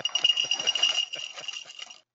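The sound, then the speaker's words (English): Lucky Charms-inspired dry cereal pours from a box into a bowl, a steady rattling patter of many small pieces tumbling for about two seconds before stopping abruptly. “I'm going to pour some of it into this handy bowl I have right here.”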